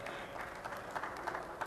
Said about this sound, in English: That was pretty weak applause.